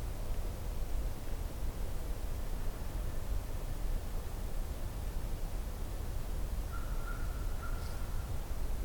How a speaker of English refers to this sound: There's an American crow.